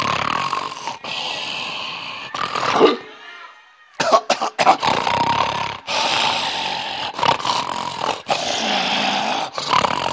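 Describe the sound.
A man's voice loudly imitates snoring, with a series of rough, rasping snorts and wheezing breaths repeating over several seconds, close to the microphone, broken by a brief quiet pause partway through.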